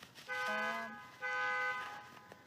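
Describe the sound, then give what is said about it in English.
A car alarm chirps twice, each a short, bright electronic tone with a steady pitch, separated by a brief gap and fairly loud against a quiet outdoor background. “That's my car.”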